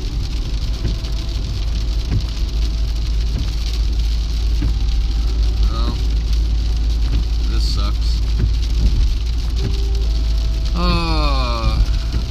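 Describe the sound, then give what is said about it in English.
Steady rain patters and hisses on a car being driven, over its low engine rumble, a constant wash of sound throughout, with a brief high squeak near the end. “Oh, this rain sucks.”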